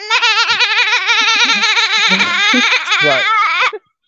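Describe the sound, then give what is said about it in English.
A child's voice imitates a sheep with one long, loud, quavering bleat, its pitch wobbling rapidly for nearly four seconds before stopping abruptly. “Wait, before you start, can I do my sheep impression?”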